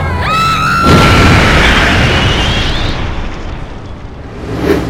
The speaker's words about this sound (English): Did you get that? Did you get the explosion? We just lost power! Something wild, damn! The plane is gonna crash!